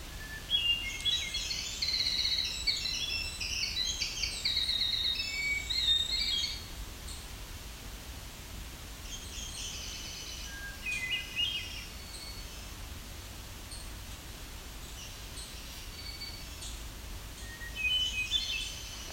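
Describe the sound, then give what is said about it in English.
Several wild birds sing and call outdoors, with bright chirps and trills clustered in the first six seconds, then scattered calls over a steady hiss of ambient background, no talking. “Finally snuck in between these other birds.”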